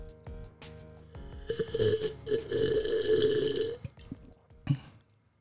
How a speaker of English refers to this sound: Oh, and I forgot to do this in the beginning, but I need to do this in honor of the tech prepper. I need to slurp.